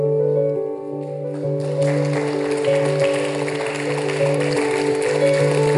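An audience breaks into clapping after about a second and a half, a dense, steady crackle of many hands over a sustained, droning chord of music, clapping to signal that someone has raised a hand.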